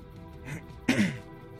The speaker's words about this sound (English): right into the mic. Just clearing my throat.